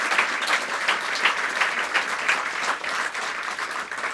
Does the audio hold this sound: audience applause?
yes